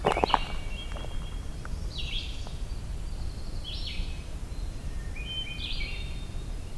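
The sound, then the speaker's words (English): Hermit thrush and red-eyed vireo sing together in separated, clear phrases every couple of seconds over a steady low rumble of outdoor background noise. “Of the hermit thrush and red-eyed vireo together here.”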